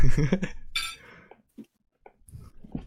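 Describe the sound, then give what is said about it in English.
Glasses clink together in a bright toast amid some murmured voices and clatter, followed by a few soft knocks and shuffling sounds. “Cheers.”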